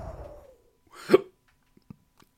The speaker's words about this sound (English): Hiccups. I do reverse hiccups.